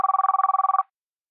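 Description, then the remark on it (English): A single short burst of a telephone ringing, a bright trilling electronic warble lasting under a second, clear with no voices, then silence. “I called him a few minutes ago to make sure he hadn't gone back to bed and to make sure I hadn't imagined the phone call in the first place.”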